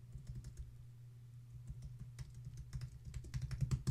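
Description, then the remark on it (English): Rapid, irregular computer keyboard clacking with occasional mouse clicks while the mouse is frozen, fairly quiet over a steady low hum, growing busier and louder toward the end. “There could be some dangle clacks there right now.”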